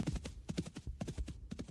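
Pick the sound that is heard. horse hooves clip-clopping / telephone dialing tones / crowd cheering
horse hooves clip-clopping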